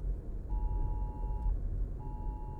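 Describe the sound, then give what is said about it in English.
A phone sounds a steady, piercing Amber Alert emergency alert tone. It holds for about a second, pauses, then starts again over a low rumbling background hum. “Oh, it's an Amber Alert on my phone, dude.”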